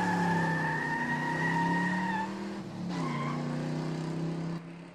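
A car tears away with loud, sustained tire squealing, the high screech briefly breaking off midway, then resuming before stopping abruptly near the end. No one speaks.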